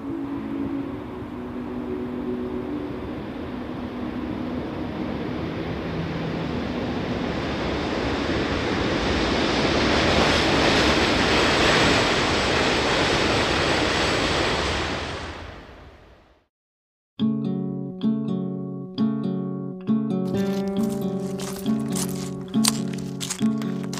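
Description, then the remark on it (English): A train rumbles across the Hellgate Bridge overhead at night, over the East River at Astoria, Queens, New York City: a broad roaring wash that swells steadily louder for about fifteen seconds, then fades off abruptly before music begins. “We were under the Hellgate Bridge one night when it swallowed a train.”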